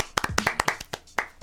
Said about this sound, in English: Clap it up for the students. Clap it up.